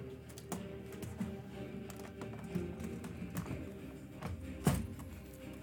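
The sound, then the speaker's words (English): Soft, irregular tapping of keys on a Bluetooth keyboard, quiet, with scattered clicks and one slightly louder tap near the end over a low background hum. “I was using the Bluetooth keyboard because it's quieter, but it does not respond well.”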